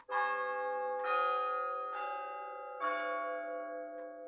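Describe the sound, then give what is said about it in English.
A church clock bell chimes the quarter, four resonant strikes about a second apart, each ringing on and overlapping the next, clear with no voices. “He spoke before the hour bell sounded, which it now did with a deep, dull, hollow, melancholy”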